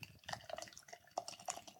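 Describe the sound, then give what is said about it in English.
Peanut butter graham cracker porter beer pours into a glass, a soft, steady stream broken by irregular gurgles and bubbly splashes. It is fairly quiet, with no one speaking. “So I'm going to pour that while I'm queuing up Sacha's information here.”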